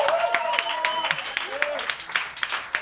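A small crowd at a storytelling night applauds, steady overlapping claps lasting a few seconds, with a few cheers and whoops rising over the clapping.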